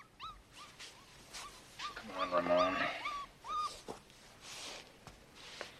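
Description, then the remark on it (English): A small puppy whimpers and yelps in a string of short, high-pitched cries, with a louder burst of whining in the middle, otherwise alone. “And I brought you a puppy.”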